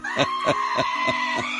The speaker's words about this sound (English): And although you can't actually see what's on the screen, this is called The Screaming Sheep.